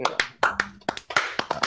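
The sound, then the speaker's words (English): A short burst of people clapping: about a dozen sharp, loud claps in an uneven, scattered rhythm, with a brief voice sounding faintly underneath. “Everyone clap.”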